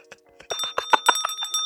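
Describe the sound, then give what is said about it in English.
A bright bell rings in a quick, repeated trill, like a bicycle bell being flicked again and again, loud with a lingering metallic tone and no voices. “Curmudgeon bell. Curmudgeon alert.”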